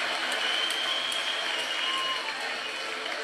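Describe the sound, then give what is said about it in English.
An audience claps steadily throughout, a dense, even wash of many hands that holds at the same loudness from start to finish without building or fading. “And the only reason y'all clap is because your woman's sitting next to you right now when I ask you.”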